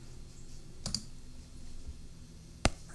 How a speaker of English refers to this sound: It's kind of dragging its feet. Let's see. Let me just keep clicking a few things here. Okay, I think I have it here.